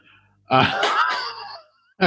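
A single loud, voiced sneeze bursts out and trails off over about a second, with a short sharp sound starting right after a brief pause.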